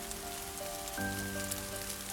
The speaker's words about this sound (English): It had rained overnight